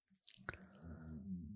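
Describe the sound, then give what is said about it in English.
A hungry person's stomach growls: a low, wobbling rumble for about a second, following a few faint wet clicks and squishes. It is fairly quiet, with no talking. “Is that your stomach? Yeah, did you hear that?”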